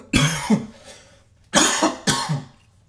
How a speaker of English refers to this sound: That's a little cough. You know, I've been talking too much.